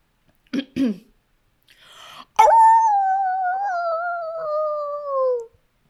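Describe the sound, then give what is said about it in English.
A person's voice imitates a dog: two short gruff barks, then a breathy rasp and a long, drawn-out, falling whine like a mournful howl, fairly loud. “It's a very sad woof. The dog wants its mommy or daddy.”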